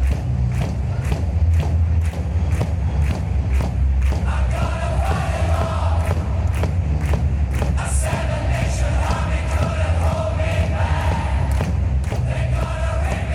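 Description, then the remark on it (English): A huge crowd of about 15,000 people in a giant stadium slaps their chests in unison, making a steady rhythm of loud, dull thuds under a constant roar of massed singing voices that continues the whole time. “And about 15,000 people singing. They're all slapping their chest.”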